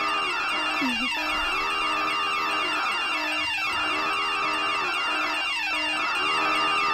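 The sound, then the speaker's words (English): A personal emergency alarm, a button worn around the neck and pressed after a fall in the house, blares nonstop, a loud, shrill electronic tone layered with buzzing harmonics, warbling and repeating in a cycle about every two and a half seconds, with no voices. “My mum used to have one of those buttons, and you wear it around your neck, and if you fall over in the house, you press the button, and this sounds.”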